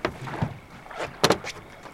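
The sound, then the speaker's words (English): Ambience aboard a boat: a steady low rumble with faint creaks, punctuated by a couple of sharp knocks near the middle. No one speaks. “Why don't we take a look around the boat?”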